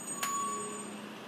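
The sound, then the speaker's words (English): A garbage truck rumbles, with a short sharp hiss of air brakes near the start and a thin steady tone over the low engine noise. “Another fire truck. Oh, trash truck. Never mind. I am incorrect.”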